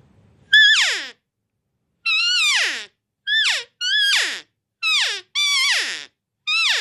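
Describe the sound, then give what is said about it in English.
Seven loud, high-pitched cow calls blown on a lathe-turned game call with a band and an internal soundboard, each a nasal mewing note that slides downward at the end, with short pauses between them and no talking. “And you can get some really nice, sweet cow sounds with this.”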